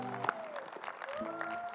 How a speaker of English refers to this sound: Why don't y'all give you guys, give the praise team, the three of them, a hand clap. Thank you.